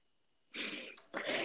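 A female dog whines in two breathy, high-pitched bursts after a brief quiet moment, the second following right after a short pause; no one speaks.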